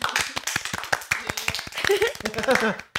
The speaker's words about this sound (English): We also have an appearance from our editor-in-chief. Clap for me. Clap.